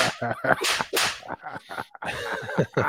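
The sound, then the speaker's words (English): A string of sharp, whip-like slap sound effects cracks loudly, several quick smacks over a few seconds with no talking. “Go ahead, slap me. Virtually.”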